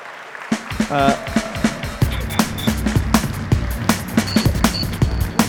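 An audience gives a huge round of applause to a presenter after his coffee routine: steady clapping, a dense wash of hands with sharper individual claps poking through, plus a brief cheer and a couple of short high whistles.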